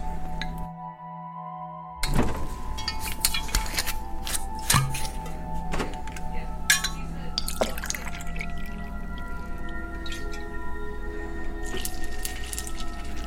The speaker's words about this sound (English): Now, pour 2 ounces of Jim Beam over that crushed ice.